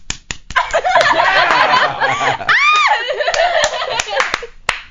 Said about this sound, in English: you were just hearing a first on Inside the Industry. You were hearing two breasts slapping against each other.